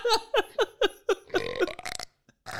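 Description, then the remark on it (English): A quick run of five short, croaky burps in a steady rhythm, followed by a longer, rougher belch that trails off. The burps are fairly loud, with no talking. “You've burped on things so many times, I've just deleted it every time, man.”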